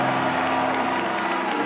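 An audience gives God a clap offering, clapping together in a steady, dense wash of applause that holds at an even, loud level throughout, with no voices standing out.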